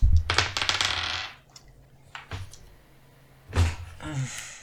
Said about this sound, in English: I really hate these dice. I got a 1 and a 6.